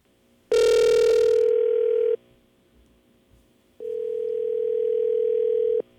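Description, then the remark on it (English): A steady telephone line tone rings out in two long pulses separated by a short pause, each a sustained mid-pitched hum, as a call is being placed; no one speaks. “So let's get on with our show and let's give Lee a call.”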